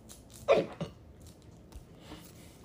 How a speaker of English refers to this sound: We're going to try to ride these fucking hiccups up. Hiccups out.